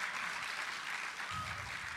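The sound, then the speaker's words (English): A crowd claps steadily throughout, a dense wash of many hands applauding at a fairly even level, with no voices standing out; applause for girls who were willing to play the game Bean Boozled. “Can you give them a round of applause here for being willing to do that?”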